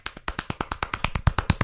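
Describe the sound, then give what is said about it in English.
Very fast hand clapping by one person who is being timed while trying to clap as many times as possible, about fifteen sharp, crisp claps in under two seconds in a steady, rapid rhythm, with no voices over it. “He's earned the Guinness World Record title for most claps in 1 minute.”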